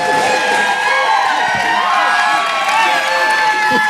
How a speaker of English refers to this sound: Wow. Yeah. These some rowdy folks down here. For people who don't see the crowd, there's only like 3 people cheering. That's power right there.